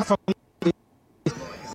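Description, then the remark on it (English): Three short, harsh coughs come in quick succession from protesters affected by tear gas fired by police, then a longer rough, noisy burst follows after a brief pause. “But this is really starting to affect them somewhat because I can hear some of them coughing now, their eyes burning.”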